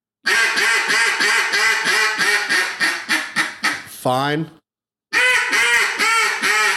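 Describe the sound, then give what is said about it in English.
A duck call blows a long, rapid string of raspy boss hen quacks, between raspy and coarse, that gradually slow and fade as the caller slows the air, broken by a brief spoken word, then the loud raspy quacking starts up again. “I'm just slowing my quack down.”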